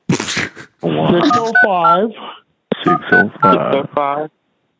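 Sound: telephone keypad dialing tones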